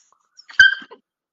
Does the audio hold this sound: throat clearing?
no